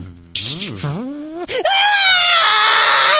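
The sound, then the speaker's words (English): A single voice lets out a loud scream, first swooping up and down in pitch, then breaking into a long, shrill, sustained shriek that holds until the end. “Keep screaming”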